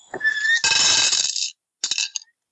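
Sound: ten dice being rolled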